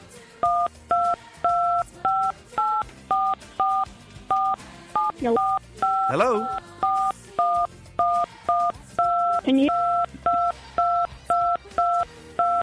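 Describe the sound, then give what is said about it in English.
A long, steady run of phone keypad tones pressed by a caller on the line, dozens of short evenly spaced beeps in a quick rhythm, fairly loud, with a voice briefly speaking partway through. “Oh, he's playing his phone.”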